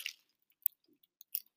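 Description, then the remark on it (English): Someone eating Lindt dark sea salt caramel chocolate: quiet, moist chewing with a few crisp clicking bites and crackles scattered over under two seconds, with no talking. “and we're going to be talking about intraventricular tumours today, while we eat some chocolate.”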